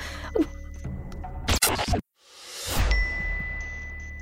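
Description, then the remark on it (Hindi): A bright electronic ding rings out once amid a short burst of clattering noise, followed by a sustained high tone, like a phone's message alert as a text message from an unknown number arrives, with no one speaking. “ये unknown number से किसने मैसेज किया?”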